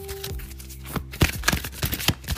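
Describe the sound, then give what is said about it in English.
Angel Prayer Oracle cards being shuffled: a quick run of soft, papery slaps and rustles in uneven bursts, with no talking over them. “Let me just shuffle them a little bit.”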